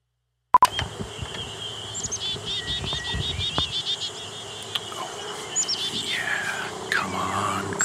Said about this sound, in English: Sample for the birdsong database. Or not. Drive all the birds away.